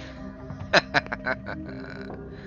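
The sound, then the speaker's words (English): A few short, guttural growls in quick succession, harsh and grunting, rising out of a steady low hum before fading back to quiet. “You hear get sit and then a bunch of just demonic growling.”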